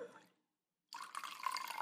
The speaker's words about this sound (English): Pour a whiskey.